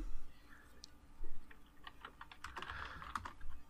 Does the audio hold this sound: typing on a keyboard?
yes